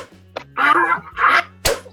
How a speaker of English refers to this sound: Did you ever hear anyone say this'll hurt me more than it'll hurt you? Yeah. Well, they were wrong. This whip hurts like a bastard.